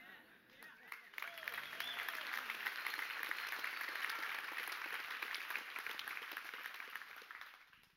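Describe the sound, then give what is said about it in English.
An audience bursts into sustained applause in praise of Jesus Christ, a dense wash of many hands clapping that swells after the first second and holds steady, with scattered voices mixed into the noise. “I think he's deserving of more than a clap in the front row, wouldn't you say?”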